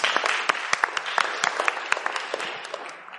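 A crowd applauds steadily, many hands clapping in a dense, crackling wash with sharper individual claps poking through, gradually tapering off toward the end.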